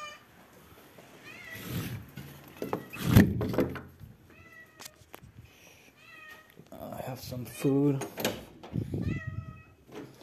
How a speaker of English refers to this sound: Oh shit, hold on. I hear the cat. Hold on. It's Milan the cat. Get in, get in.